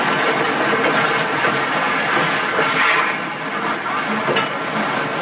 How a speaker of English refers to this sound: Tonight's file opens outside the small shack that serves as the railroad station in a Midwestern farming town. A lone man stands on the platform watching the noon train from the city arrive.